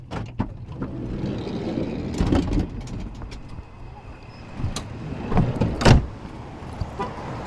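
People climb out of a parked car at the corner of Grant and Campbell: a few sharp door clunks and thumps, rustling movement, and muffled street ambience with a faint murmur of voices.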